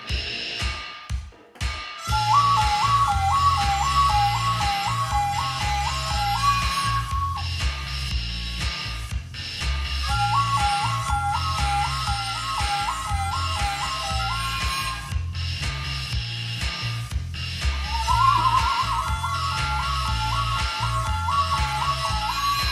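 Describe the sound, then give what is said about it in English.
A shrill, reedy harmonica and death whistle solo warbles between two pitches in three repeated phrases over a steady thumping bass groove, loud and up front with no talking. “I think the last part is it's going to be a harmonica death whistle solo.”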